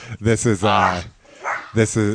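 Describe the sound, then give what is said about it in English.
A dog barks loudly at a friend arriving at the house, letting out a rapid string of harsh barks, one drawn out longer, then a short pause before two more sharp barks. “Our friend just showed up about an hour after he was supposed to be here, as you can tell from our viciously ferocious dog.”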